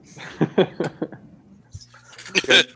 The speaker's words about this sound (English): Actually, you know what? It's hard to hear over the smashing of the glass.